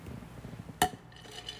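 A single bright clink of ice knocking against a glass, sharp, over a quiet background with faint low rumble and no talking.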